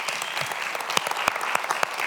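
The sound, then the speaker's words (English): An audience applauds Mike Hughes steadily, a dense wash of overlapping hand claps with a few sharper, louder claps standing out through the sustained noise. “Mike, can we give Mike Hughes a round of applause?”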